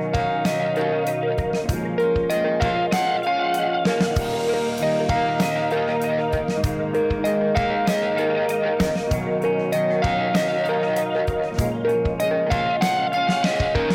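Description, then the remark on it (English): Electric guitar run through a Keeley Echoes modulated delay pedal, each note echoing and smearing into a wavering, shimmering wash. The playing is steady and fairly loud throughout, with no voices. “A modulated delay.”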